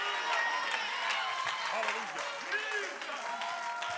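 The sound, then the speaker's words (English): A church audience claps steadily to magnify the name of Jesus, a dense wash of many hands, with voices calling out and cheering over it. “If I've got 2 or 3 believers, won't you leap to your feet, clap your hands, and magnify the name of Jesus?”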